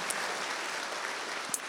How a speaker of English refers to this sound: Give Jesus a clap offering. It's not about me. It's about him. Amen.